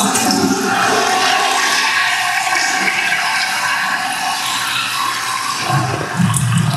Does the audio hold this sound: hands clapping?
no